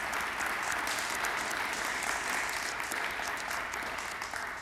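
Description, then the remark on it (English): Steady applause from a church audience at a service fills the whole clip, a dense, even patter of many hands clapping at constant loudness without pauses or voices. “You clap for that.”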